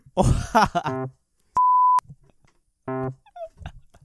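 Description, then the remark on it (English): A single flat, high-pitched censor bleep holds steady for about half a second, loud and sudden, set between short bursts of voiced, groaning vocal sounds before and after it. “We're like gonna bleep out that second part.”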